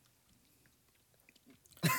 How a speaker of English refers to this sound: All right, this is probably just a lot of noise of us chewing.